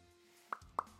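A glass bottle of Rekorderlig cider being opened, giving three short, hollow pops spaced about a quarter second apart, each crisp and fairly loud against a quiet background with no talking.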